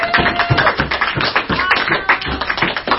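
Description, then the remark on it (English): A group of people at a study group on the book of Jonah clapping together to welcome a newcomer, a dense, steady patter of overlapping claps, fairly loud and sustained for a few seconds with no voices over it. “Everybody give Autumn a round of applause.”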